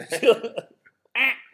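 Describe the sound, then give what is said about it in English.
A person mimics a duck with a few nasal, buzzy quacking sounds, a cluster of choppy bursts followed by a brief pause and one more drawn-out quack, fairly loud. “She'll love to do the, where's the duck?”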